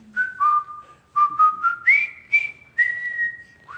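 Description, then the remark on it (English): A whistled march tune, the theme from the movie The Bridge Over the River Kwai, with clear, steady notes climbing in short steps and held phrases, some with a slight waver. It is whistled alone, with no talking. “You may have seen the movie, The Bridge Over the River Kwai. It's got that great theme.”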